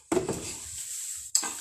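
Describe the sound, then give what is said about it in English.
Strawberry lemonade is poured into a glass in a steady splashing hiss that lasts about a second, starting with a clink and ending with a brief second burst of pouring. “I got a little strawberry lemonade here. I'm going to pour a little bit.”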